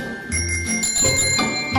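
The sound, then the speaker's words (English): A small bell rung, its bright metallic tone struck several times in quick succession and left ringing between strikes, with no voices over it. “Where's my bell?”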